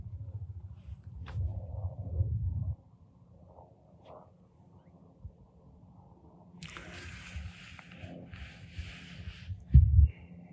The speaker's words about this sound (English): Well, if you can hear that helicopter, I guess I'm not the only one out here anymore.